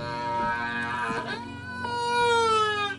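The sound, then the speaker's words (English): A whale call: sustained, resonant tonal moans rich in overtones, their pitch bending and sliding as one long call flows into the next, steady and fairly loud throughout with no talking. “The revelation that whales create such diverse and beautiful calls proved that these giants were not just hunks of meat to kill and eat, but intelligent and complex beings.”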